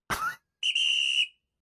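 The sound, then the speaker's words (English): A brief noisy burst, then a loud, steady high-pitched whistle sound effect holding one note for about half a second before cutting off. No one speaks. “more of you listen, more of you subscribe, and we get some big fancy advertisers, we might get a whistle sound effect.”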